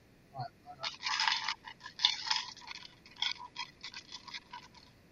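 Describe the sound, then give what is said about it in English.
A standard black die clatters and rolls across a hard tabletop, a quick burst of bright rattling clicks that bounce irregularly and gradually thin out over several seconds. “Off standard black die. Oh, it's cocked.”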